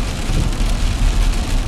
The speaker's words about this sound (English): So right now I'm driving. It's inclement weather. It's raining really hard.